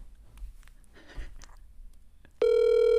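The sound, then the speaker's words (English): A phone call rings out over a speakerphone: after a couple of seconds of faint rustling, a loud, steady, buzzy ringback tone starts abruptly and holds to the end. “What if she just doesn't answer? She probably won't.”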